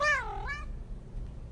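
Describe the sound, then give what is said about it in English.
A single meow from a male cat named Seal, fairly clear, rising then falling in pitch over about half a second, followed by quiet background noise with no talking. “This is my cat.”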